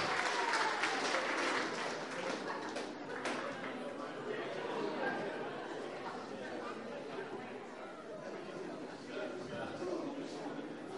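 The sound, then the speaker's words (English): An audience claps for themselves steadily for several seconds, a dense wash of overlapping handclaps mixed with excited chatter and a few voices calling out, tapering slightly toward the end. “Okay, you can give yourselves a clap.”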